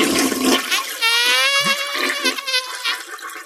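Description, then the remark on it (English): A toilet flushes, a loud rush of swirling water with a high whistling refill tone running through it for about three seconds, with no voices. “Flush it.”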